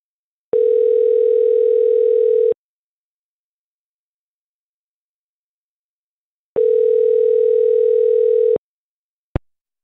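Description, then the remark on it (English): A telephone ringback tone purrs twice on a call placed by the radio station Mix 94.7, each steady ring lasting about two seconds with a long silent gap between, followed by a brief click as the line picks up. No one speaks. “We're calling with a radio station in a segment called Waiting by the Phone.”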